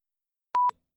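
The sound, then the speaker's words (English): A single short telephone keypad beep, the steady dual-tone chirp of the 0 button being pressed to reach an operator, clear with silence on either side. “If you'd like to speak with an operator, please press 0. I want to press 0.”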